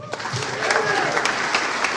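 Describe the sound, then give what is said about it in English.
A dinner crowd at a packed event claps in a dense, steady burst of applause after being asked who enjoyed supper, many hands at once at a fairly loud, even level, with a few voices calling out faintly among the clapping. “I don't have to clap to show you how much I enjoy my supper.”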